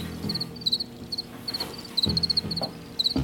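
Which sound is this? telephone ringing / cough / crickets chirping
crickets chirping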